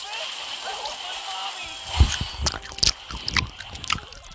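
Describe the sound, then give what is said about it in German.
Loud, wet gum chewing, as by a person on a bus: irregular smacking and squishing bursts that start halfway through after a quiet hiss and keep going in an uneven rhythm. “Die kauen so Kaugummi. Für euch hört es sich so an.”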